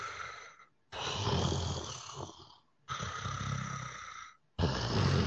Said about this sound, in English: You begin to feel like this deep reverberating breathing around you.